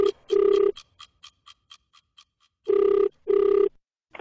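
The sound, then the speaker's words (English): A telephone rings in short electronic bursts before the call is answered, a couple at the start, then a pause with faint ticking, then two more loud rings close together. No one speaks. “thank you for answering the phone. I was worried I wouldn't get a hold of you.”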